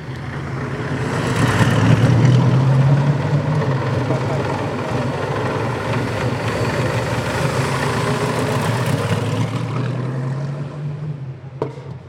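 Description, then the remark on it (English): A vintage Napier-Railton racing car engine runs loud as it goes round and round at Brooklands, a deep throaty rumble that swells with a quick rise in revs early on, then holds a steady, rough drone to the end. “Finally, I've caught up with the world's fastest man, and he's in a car that was fastest in its day, but this is somewhat different than Napier Railton from what you're used to driving.”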